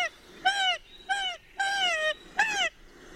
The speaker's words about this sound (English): You get this call when you've got the bird in the hand and you're swinging it upside down. It's a degree more, I think, than the last in terms of alarm.